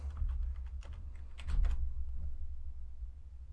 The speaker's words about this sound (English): Where this part, oh, I shouldn't be clicking. This part right here.